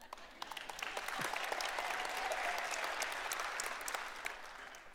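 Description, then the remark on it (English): An audience claps steadily for several seconds, a dense, crackling wash of many hands that swells slightly in the middle and stays fairly loud throughout, with no one speaking. “If you clap long enough, I can have a drink.”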